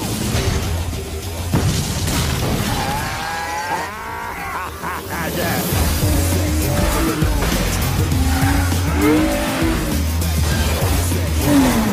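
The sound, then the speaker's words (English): A loud car engine roars while tires squeal in sharp, wavering bursts, with a steady rumble underneath and intermittent skidding screeches through the middle and end. “Police! Stop! Pull up! Stop the car!”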